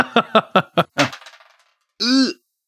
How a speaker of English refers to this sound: Okay, so you roll your attack dice, and then you roll it again. Six. Six!